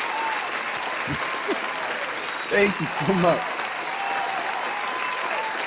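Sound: applause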